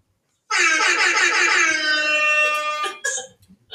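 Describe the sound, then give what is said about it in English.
A loud, sustained blast of air horns starts abruptly and holds a bright, layered, slightly wavering tone for over two seconds, then cuts off, followed by a short second burst. “Oh, you like the air horns?”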